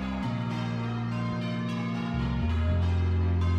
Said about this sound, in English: You're listening to the bells ringing at the historic landmark of Bristol Cathedral,